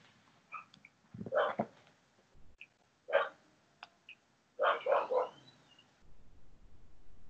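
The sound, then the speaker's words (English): A female dog barks in short, fairly quiet bursts: a couple of early yaps, a single bark, then a quick run of three, with a faint background hum between them. “you could listen to my dog serenading you with her barks.”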